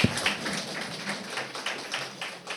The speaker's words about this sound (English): So big round of applause for awesome. Thank you so much.